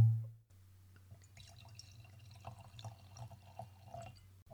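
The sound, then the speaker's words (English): Buttery Chardonnay glugs and trickles from a bottle into a glass, fairly quiet, with small splashes and drips over a steady low hum; no one speaks. “Well, let's go ahead and get that open.”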